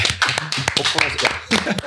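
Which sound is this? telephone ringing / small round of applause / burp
small round of applause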